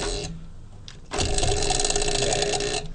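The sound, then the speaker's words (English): A prize wheel spun at an open mic to pick a subject to riff on spins with a fast, steady rattle of clicks that starts abruptly, holds loud and even for about two seconds, then cuts off as the wheel slows, landing on the topic "Mayo or Miracle Whip". “You're going to spin this wheel, and it's pretty self-explanatory.”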